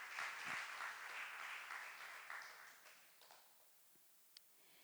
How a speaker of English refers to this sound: Give the Lord a round of applause this morning.